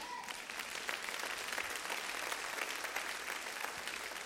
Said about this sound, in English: I can tell when it's hard for y'all to clap. Come on, somebody.